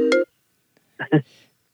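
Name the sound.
phone alarm going off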